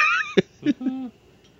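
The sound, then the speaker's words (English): A small female kitten named Charlie gives a thin, high-pitched meow that slides downward, followed by a few short, soft vocal chirps, with no talking. “No, not for you. Not for kittens.”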